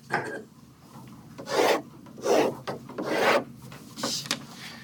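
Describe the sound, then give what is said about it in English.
A piece of paper is handled, with about five short bursts of dry rustling and scraping separated by brief pauses. No one speaks. “Do I have a just random piece of paper? I do.”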